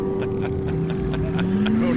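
A Polaris XC440 snowmobile engine roars steadily throughout as it makes a speed run, its droning pitch climbing gradually as it speeds by, with faint rhythmic clicks and rattles over the continuous motor noise.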